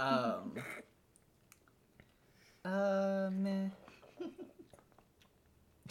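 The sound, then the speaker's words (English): A single loud sneeze with a strongly voiced, drawn-out tone lasting about a second, preceded by a brief vocal sound and followed by faint clicks and mouth noises. “Bless you. That one just sounds very difficult.”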